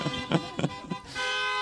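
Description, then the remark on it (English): Three quick car horn honks in a row in a parking lot, then one longer, steady blast held to the end. The horns sound loud, with no talking over them. “I shouldn't, having the power to make the honks, that's going to go in my head.”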